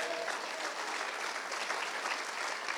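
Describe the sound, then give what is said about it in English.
Steady applause from a crowd fills the whole stretch, a dense, continuous patter of many hands clapping at once for the teenagers, fairly loud and even without pauses. “Somebody clap for our teenagers.”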